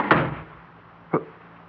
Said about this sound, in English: How did that door close? I closed it. But you never moved. You just sat there and it closed behind me and